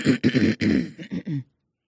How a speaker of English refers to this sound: I love how you always clear your throat before you do it.